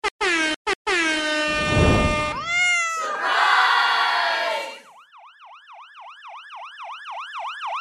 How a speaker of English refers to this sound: Is there a siren going on?